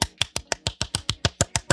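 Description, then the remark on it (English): A quick, steady run of about a dozen sharp hand claps, evenly spaced at several per second, crisp and moderately loud with no voices. “Give you some ASMR action. Claps.”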